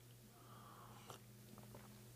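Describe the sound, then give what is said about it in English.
A single quick sip of coffee, a short slurp followed by a couple of faint mouth clicks and swallows over a steady low hum, with no one talking. “let's have a sip of coffee and we'll dive into John 6”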